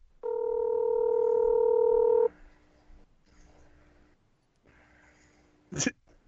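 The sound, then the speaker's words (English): A loud, steady telephone tone hums for about two seconds during a call to a mother at 10:40 at night, then cuts off into faint line noise and near silence, ending with a sharp click like a handset being picked up. “Derek in the chat's like calls his mom at 10:40 at night”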